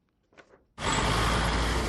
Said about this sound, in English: Rusted buses fill Dakar's roads at rush hour. Passengers hang off the back doors while teenagers on rollerblades cling to the sides, dodging horse carts and unpainted speed bumps.